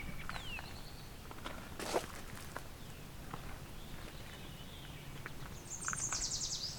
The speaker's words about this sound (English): Oh, no, there's a Baltimore oriole. Here we go, two Baltimore orioles.